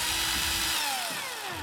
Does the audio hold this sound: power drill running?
yes